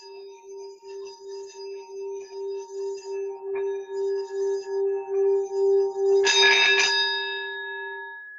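A singing bowl hums with a steady, pulsing tone that swells louder as the rim is rubbed, then a sudden clattering knock near the end as the player crashes the bowl, before the ring fades out.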